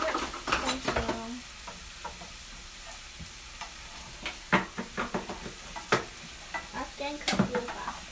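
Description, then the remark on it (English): Enchilada sauce, water and tomato paste being stirred together in a pot, with repeated scraping and clinking strokes of a utensil against the metal, irregular in rhythm, over a soft bubbling sizzle; no one speaks. “We're going to mix the water, the enchilada sauce, and the tomato paste can, and we're going to mix it together.”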